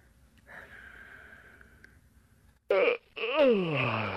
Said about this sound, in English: What's that sound supposed to be? It was supposed to be a yawn, but it didn't work.